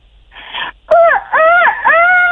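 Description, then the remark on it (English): A person imitates a rooster crow: after a soft breathy lead-in and a sharp click, a loud, strained voiced call rises and falls in pitch over three drawn-out, wavering segments. “got a lot of parents looking at me wondering why I'm making a rooster call, but...”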